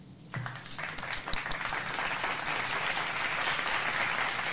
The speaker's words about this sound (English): Do the applause.